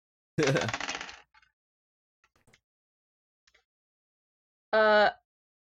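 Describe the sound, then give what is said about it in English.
Two six-sided dice clatter across a hard tabletop in a bright, ringing rattle, a few faint ticks follow, then a second short clattering burst. Fairly loud, with no voices. “Dice don't fail me now.”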